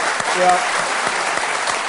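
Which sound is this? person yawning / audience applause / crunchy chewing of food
audience applause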